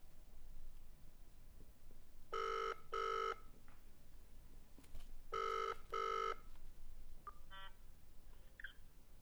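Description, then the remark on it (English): A telephone ringing tone heard over a loudspeaker: two double rings, each a pair of short buzzy bursts, moderately loud against a faint background hiss, followed by a few small clicks and beeps. “Ringing now, loudspeaker me.”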